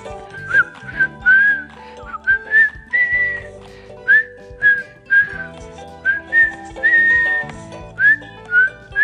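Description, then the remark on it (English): A person whistles a bright, sliding melody in short, repeated phrases, clear, over a steady instrumental backing with no talking. “Take care and keep whistling.”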